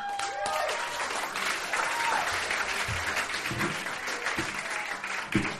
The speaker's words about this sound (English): Wow, thank you for that smattering of applause. What a great crowd.